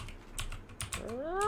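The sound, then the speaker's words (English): Several sharp clacks of typing on a computer keyboard at an uneven pace, moderately loud, with a rising tonal cry creeping in near the end. The Pokemon name Sprigatito is being typed into Google. “I typed in the name and it corrected it to spaghetti on Google.”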